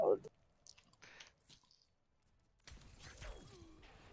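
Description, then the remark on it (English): Wet slurping of a slushy drink through a straw, a few short sucking bursts followed by a longer, louder noisy slurp at the end, with brief voice sounds at the start. “Who's slurping on a slushy?”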